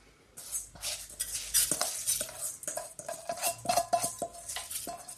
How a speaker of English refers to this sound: Okay, my water is finally clear. So now I'm gonna pop my rice into my saucepan.